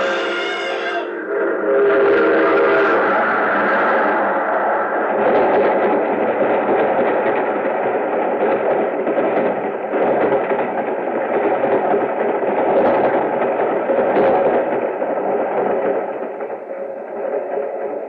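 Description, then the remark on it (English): A loud, continuous rumble and roar of a passing freight train, heavy, with a brief horn-like tone at the start. No one speaks. “There's a train coming.”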